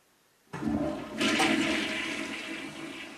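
A toilet flushes: a sudden clunk, then a loud rushing surge of water that swirls and slowly fades, with no voices.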